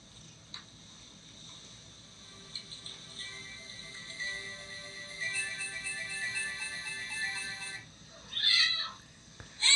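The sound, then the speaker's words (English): A single short cat meow rises near the end, after several seconds of steady high electronic tones humming from a battery-powered toy sitting untouched in a corner. “The cat.”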